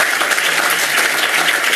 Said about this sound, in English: And we're making sure that our students, let's give a round of applause for our kids.